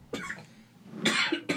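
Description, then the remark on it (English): A person coughs in harsh bursts after a hit from a vape pen: one sharp cough, a brief pause, then a louder raspy cough followed quickly by another short one. No talking accompanies the coughs. “That was a delayed cough.”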